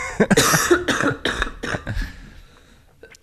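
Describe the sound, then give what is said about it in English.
A loud fit of smoker's cough: five or six harsh, hacking coughs in rapid succession, each fainter than the last, trailing off into a raspy breath. “No one coughs like that if they don't smoke.”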